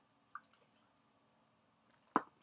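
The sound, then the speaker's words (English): A sip of water, a faint wet click early on, then quiet, then a louder brief slurping gulp near the end. No one speaks. “Got a sip of water.”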